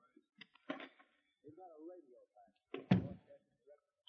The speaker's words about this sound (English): He went out, and I heard a key turn in the lock of the door.